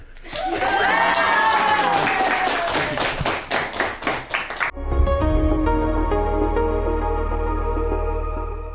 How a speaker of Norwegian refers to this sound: Nå har dere vært roligere enn dere har vært noen gang, så jeg tenker at vi skal bare juble litt for å få gang på at folk er med og støtter dere til Oslo. Kan vi bare få en stor sånn, ja, kom igjen!